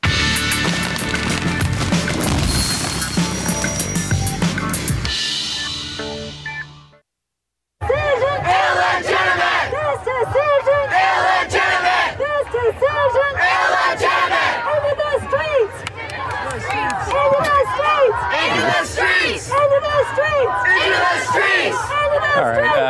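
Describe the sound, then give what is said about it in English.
A loud crowd roars continuously while a person yells over it into a little microphone, amplified and distorted, then puts it up to another person's face; preceded by a few seconds of music and a brief silence. “You can't just put, you're yelling into a little microphone like that and then putting it up to somebody else's face.”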